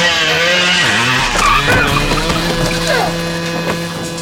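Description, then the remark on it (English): A moped's small motor whines and revs with shifting pitch as the moped slides on its side down the street, a harsh scraping skid grinding along continuously, loud, for several seconds without any talking. “He's on a moped. Well, on a moped, on its side, sliding down the street.”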